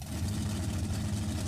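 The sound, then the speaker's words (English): The engine of an Australian-style burnout contest car idles steadily, a low rumbling hum with constant vibration and no pauses, running alone without any voices. “And this car, well, it needs a lot of tires.”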